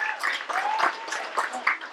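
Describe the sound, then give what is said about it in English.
A crowd claps steadily, a dense, crackling patter of many hands at moderate volume. A faint voice or whistle-like tone rises briefly partway through. “I think you deserve a big clap as well, because, yeah, definitely.”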